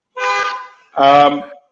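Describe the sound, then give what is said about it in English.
A car alarm sounds off in two loud, brassy horn blasts, each lasting about half a second with a short gap between, steady in pitch and harmonically rich. “You cannot predict when you lie that, you know, car alarm will go off.”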